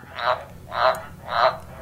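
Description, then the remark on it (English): An Indonesian frog, a species that gives birth to tadpoles and was named among the top 10 new species of 2015, calls three times in a steady rhythm, each croak a short buzzy burst with pauses between, clear with no voices. “That's the Indonesian frog, and it's one of the most unusual on the list, says Dr.”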